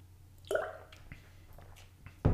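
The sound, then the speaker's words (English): A short slurping sip of a drink, followed by a few small wet mouth clicks and a swallow, then a sudden louder clunk at the end. No one speaks. “Yeah, I know it's before the cue, but I had to get a little sip.”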